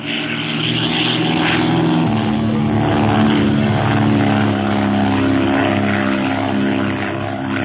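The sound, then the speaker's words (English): A propeller airplane roars past at close range, its loud, steady engine drone thick with buzzing tones that shift in pitch partway through as it passes overhead. “Perhaps lunatics are flying the plane.”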